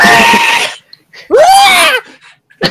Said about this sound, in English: Victory screech.